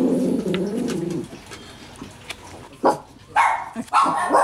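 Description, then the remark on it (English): Dogs bark in three sharp, loud bursts near the end, after a stretch of lower droning and murmuring sound with no talking. “Uh-oh, those are the dogs.”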